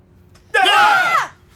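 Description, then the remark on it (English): A sudden, loud, piercing scream bursts out of near silence during a pause in the music of a paranormal thriller movie trailer, sustained for about half a second with harsh wavering tones before cutting off abruptly, a classic jump-scare shriek. “He's the monster that attacks you during a pregnant pause in music or sound effects where you, the audience, are most vulnerable.”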